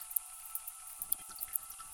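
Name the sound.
running water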